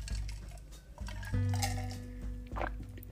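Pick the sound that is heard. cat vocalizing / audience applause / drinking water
drinking water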